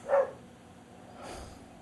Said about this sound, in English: Can you guys hear that dog?